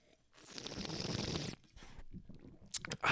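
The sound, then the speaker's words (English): A noisy slurp of someone sipping the last of a drink as a toast for about a second, followed by quieter swallowing and mouth sounds and a couple of sharp, light clinks. “Well, let's drink to that. All right. And say goodbye to the people. Left. I got a little sip left.”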